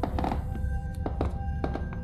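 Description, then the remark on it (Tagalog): Heavy footsteps, heard past three o'clock, land in uneven groups of dull, thudding steps over a constant low rumble and a faint steady tone. No one speaks. “Hindi pa man nag-iinit ang puwetan ko sa upuan ay narinig ko na namang muli ang mga yabag.”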